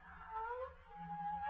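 A long, drawn-out meow from a black cat with yellow eyes, a tonal cry that slides slightly in pitch and then holds steady, fairly quiet over a low background hum with no talking.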